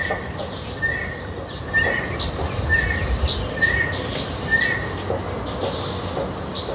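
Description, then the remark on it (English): A bird calls over and over, a short bright note repeated about once a second, with fainter higher chirps around it over a steady hiss of outdoor background noise. “Oh, that's a pretty bird. I've never seen that one before.”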